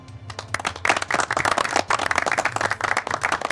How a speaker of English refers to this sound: You see, a number of people are all clapping in the crowd. It's a solemn clap, but a genuine and an appreciative one.